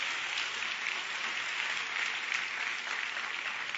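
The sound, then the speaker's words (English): A church audience gives the Lord a hand clap in a dense, steady burst of applause that holds at an even, fairly loud level for a few seconds, with many hands blending into a continuous crackle and no voices over it. “Due to faith working, the wisdom of God working, everybody give the Lord a hand clap for that right there.”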